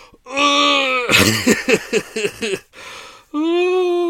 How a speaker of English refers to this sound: Is it time for a yawn? I think it could be.